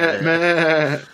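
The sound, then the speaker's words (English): A human voice imitates a goat's bleat as a cheer during a role-playing game, a single wavering, nasal call with a shaky vibrato that holds steady and then trails off, loud and without any other sounds. “It mostly sounds like a bunch of goats going crazy. All the goats cheer.”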